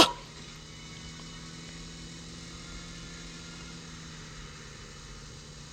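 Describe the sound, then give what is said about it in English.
A video game car engine runs at a steady idle, a constant low droning hum with no revving, following a brief louder burst at the very start. No one speaks. “Good thing we in this car.”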